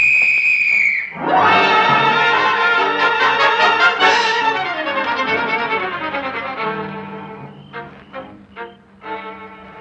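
A shrill police whistle blasts for about a second, then a loud burst of dramatic orchestral music takes over and slowly fades.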